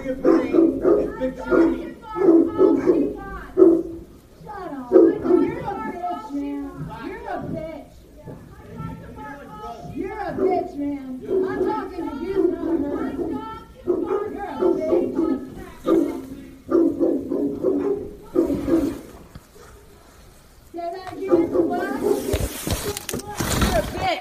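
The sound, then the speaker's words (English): A dog barks repeatedly in short, loud bursts, with occasional yips and whines, while voices talk in the background throughout. “Barking at hi”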